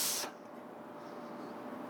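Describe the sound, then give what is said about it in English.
A person imitates a hiss with their mouth, giving one short, sharp, breathy burst of airy noise that stops abruptly and leaves only a low, quiet background. “The word hiss, what does it sound like? It sounds like a hiss.”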